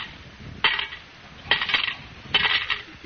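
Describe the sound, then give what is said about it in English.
Coins totalling 40 cents are dropped one at a time into a collection kitty to pay a fine, in a scene from the radio comedy Our Miss Brooks: three bright metallic clinks with brief jingling rings, evenly spaced less than a second apart, with no talking. “But, Miss Brooks, I only asked for 30 cents. You put 40 in the kitty.”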